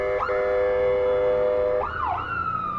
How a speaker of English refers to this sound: It's amazing how often that happens while I'm talking to people. That ambulances drive by.